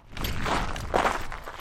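Footsteps crunch across gritty red dirt, a few steady scraping steps with a dry, rough texture at moderate loudness, with no one speaking.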